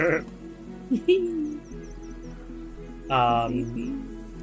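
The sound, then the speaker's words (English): A person imitates a sheep, letting out a drawn-out, wavering bleat with their voice, fairly loud, followed by a second bleat-like vocal sound after a short pause. “And the sheep wakes up very lazily, looks at you all, squints, slowly lumbers up and lets it up.”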